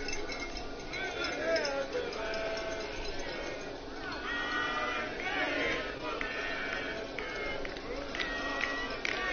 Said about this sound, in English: Some Daga fans making some noise in the crowd. They are already louder than last time.